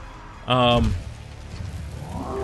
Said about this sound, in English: You hear the roar, it's more of a Lou Ferrigno roar, and his face up here looks very Lou Ferrigno.